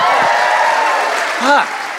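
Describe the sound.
A live show audience applauds everyone who has performed so far that night in a steady, dense wash of clapping that holds for the whole stretch, with a voice briefly rising over it near the end.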